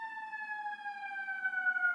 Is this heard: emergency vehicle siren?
yes